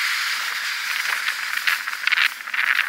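A loud truck passing, a steady rushing hiss with rattling bursts that swell toward the end, heard on its own without voices.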